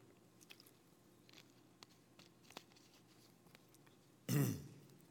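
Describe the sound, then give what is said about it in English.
Someone takes a drink of water, with faint sips and soft swallowing clicks, followed near the end by a short, loud thump. No one speaks. “I just need a little drink of water.”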